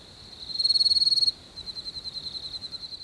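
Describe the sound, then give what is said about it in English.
A male field cricket chirps steadily, its rapid pulsed trills repeating in quick rhythm, with a louder burst near the start before settling into a softer, continuing series of chirps. “The chirpy cricket pod”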